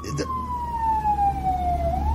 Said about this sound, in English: I was going to say, I find it funny that a fire truck is driving by as we're talking about firemen. There go the hot firemen now.